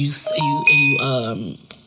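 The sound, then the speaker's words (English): A phone's text message notification: a few short, thin electronic beeps at different pitches sound over steady talking from a person. “Wait for the beeping all going on. I don't even know who's texting me”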